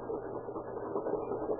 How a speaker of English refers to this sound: Still hear that pump? Yes, I hear it.